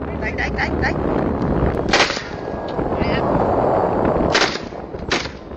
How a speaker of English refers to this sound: These are big steel ships, and very early on into the video you start hearing gunshots, and that's when I immediately stopped everything else I was doing and focused.